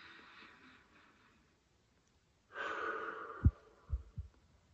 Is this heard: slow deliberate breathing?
yes